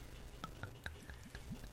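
Spaten beer bottled in St. Louis being poured from a green bottle into a glass, heard as a quiet stream of soft gurgles and little bubbly glugs over a couple of seconds, with no one talking.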